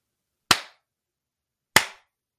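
Two sharp, distinct hand claps sound alone in silence in the woods, a little over a second apart, each one crisp with a brief ringing tail, answering no to a yes-or-no question.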